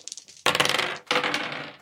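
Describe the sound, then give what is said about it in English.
A couple of light taps, then two quick rattling bursts as a pair of dice, rolled for a perception check, tumble and clatter across a hard tabletop, fairly loud, with no voices. “You guys make perception checks at advantage, so roll two dice and get the higher one for me.”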